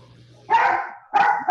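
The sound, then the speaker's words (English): A dog barks loudly, two sharp barks about half a second apart, with the start of a third cut off at the end. “Yeah, I guess the dog agrees as well.”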